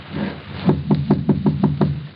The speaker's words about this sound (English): Then, knock.